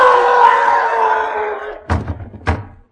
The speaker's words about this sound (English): Sounded like someone falling against the front door.